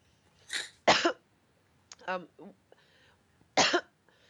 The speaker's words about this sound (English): I'm sorry. I just got like the coughs.